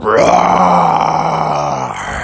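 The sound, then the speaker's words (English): A person imitates a bear's roar with one loud, sustained growling cry lasting about two seconds. It swells up in pitch at the start, then holds a low, rough tone before trailing off. “And Bubby let out a great roar.”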